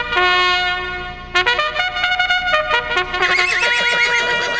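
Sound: horse neighing sound effect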